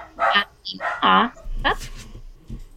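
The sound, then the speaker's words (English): A dog in the background barks several times in quick, uneven bursts, the yelps fairly loud and sharp, with indistinct voice sounds in between. “Sorry, say again, the dog kicked off in the background.”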